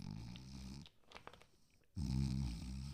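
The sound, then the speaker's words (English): A person loudly imitates the heavy snoring and deep breathing of a man sleeping in his car: two long, rough, rumbling snores separated by a short quieter breath, with no other talking. “Deep breathing, really heavy snoring.”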